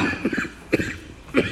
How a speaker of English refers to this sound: Sorry, I have a nagging cough, forgive me.